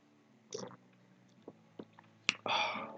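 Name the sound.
sipping wine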